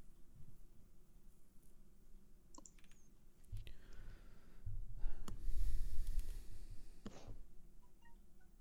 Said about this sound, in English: I heard a beep. Thought it was the thing flaking out again.